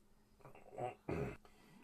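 cat meowing angrily

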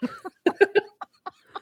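throat clearing

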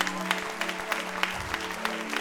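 audience applauding

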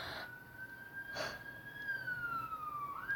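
ambulance siren passing outside

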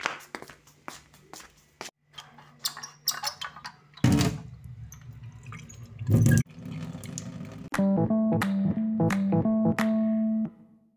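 running water

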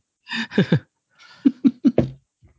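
throat clearing

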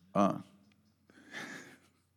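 dog snoring

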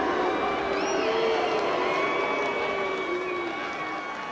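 crowd booing

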